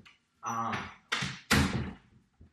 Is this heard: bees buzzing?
no